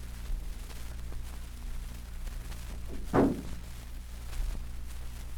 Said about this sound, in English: Admit King Navarre. Then close the door.